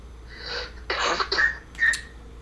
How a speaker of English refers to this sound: And I have a cough.